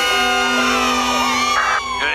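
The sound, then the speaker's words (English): A group of Springfield Elementary schoolchildren on The Simpsons cheer and whoop together in a loud, sustained burst lasting about two seconds, their overlapping high voices lively, applauding birthday boy Milhouse for his party on Saturday. “Oh, and by the way, I'd like to say thanks and applause to birthday boy Milhouse for his totally bitchin' party on Saturday.”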